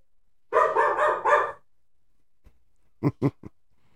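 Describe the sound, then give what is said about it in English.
A dog barks in a quick run of about four barks, falls quiet, then lets out three shorter, sharper barks. No one speaks. “Yeah, I mean, the dog, like, barked all in our episode.”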